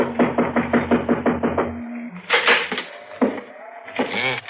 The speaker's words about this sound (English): Now watch the porch step. It's busted. I guess we knock. It's polite.